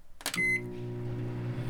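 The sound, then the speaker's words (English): A click and a single short electronic keypad beep as 30 seconds is set on a microwave, followed right away by the steady low hum of the oven starting to run to heat a cup of milk, with no voices. “I'm about to press 30 seconds on the microwave to heat up the milk.”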